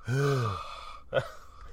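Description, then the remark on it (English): A voice imitates heavy, rasping breathing through a mask: one drawn-out, throaty breath followed by a short, sharp second breath, fairly loud. “Or Vader got, no, he got that from, well, I mean, it's breathing in a mask.”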